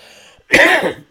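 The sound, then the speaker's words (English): A single harsh cough bursts out loud after a brief quiet moment, raspy and throaty, with no talking. “See, I'm getting excited now. I'm coughing and shit.”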